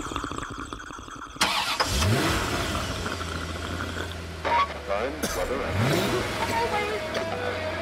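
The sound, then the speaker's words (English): A car engine cranks and catches, then settles into a low idle with a couple of quick revs rising over it. “Then the next thing is the sound of a car starting.”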